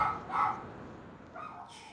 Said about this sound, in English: You hear them barking, don't you? Yes. Okay. Yeah. Well, they'll be quiet in a minute, but they'll tucker themselves out. But yeah, two dogs.